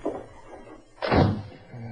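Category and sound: household object, door closing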